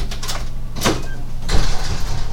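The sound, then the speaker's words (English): A door being locked and shut: a sharp metallic clack, then a second broader thud a moment later, over a steady low hum with no talking. “I was just locking and shutting the door.”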